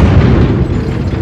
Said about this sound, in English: By the Force! What was that? Another explosion!